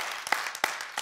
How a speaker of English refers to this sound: And you don't have to applaud that. It's just my call.